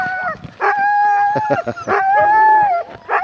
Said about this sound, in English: Despite what it may sound like, no dogs were harmed in the making of this documentary. The barking and whining and howling that you hear, that's because they just can't wait to run. The second they see my dad with the harnesses, they start.